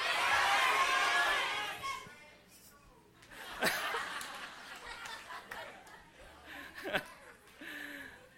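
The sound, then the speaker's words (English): An audience, cheering on a count of three, shouts all at once in a loud, jumbled burst lasting about two seconds, then breaks down into scattered laughter and murmuring chatter. “It's really difficult to listen when there's just too many noise around you.”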